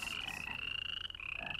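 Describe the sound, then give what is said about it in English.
A dense chorus of frogs croaking steadily, many overlapping rasping calls forming a continuous, loud trill with no voices present. “Entreat Jehovah that he may remove the frogs from me and my people.”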